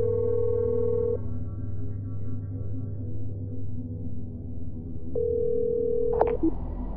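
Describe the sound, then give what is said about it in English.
A steady telephone ringing tone sounds twice with a long pause between, over a constant low hum, followed by a brief click as the line picks up. “You've reached my phone, but you haven't reached me.”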